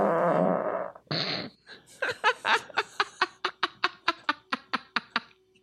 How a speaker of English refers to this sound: That was a nasty fart. You got a shit coming soon.